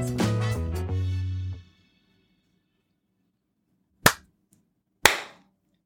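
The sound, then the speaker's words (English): After a brief musical sting fades out and a pause, two sharp, loud hand claps ring out about a second apart, each a crisp single smack with a quick decay. “I've just realised my clap to get the recording started was a bit terrible, though, but hello, regardless.”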